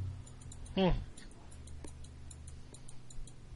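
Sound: repeated computer mouse clicking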